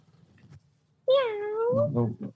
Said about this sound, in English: But there she goes. Oh, she's going to the Tesla. Meow. Meow. Meow.